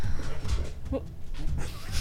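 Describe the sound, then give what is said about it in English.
A displacer beast growls, a low, rumbling growl running through the whole two seconds, fairly loud, with a brief higher whine-like rise near the middle. “The beast growls.”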